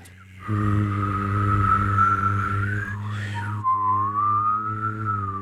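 humming and whistling

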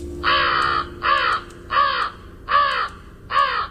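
american crow calls

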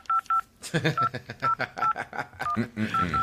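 telephone keypad dialing tones

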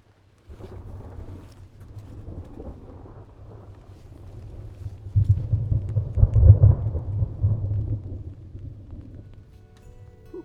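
thunder

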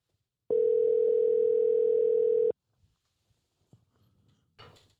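phone call ringing out

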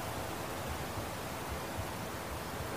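falling rain

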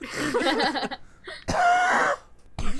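harsh barking cough

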